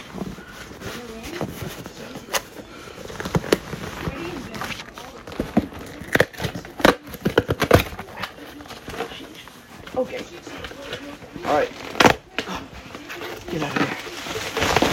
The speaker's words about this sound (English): Oh, look, it's popping paper. Oh, yes. Well, maybe not. Oh, yeah, it'll pop. Pop.